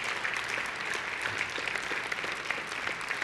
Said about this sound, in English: Let's stand to your feet and give the Lord a clap offering.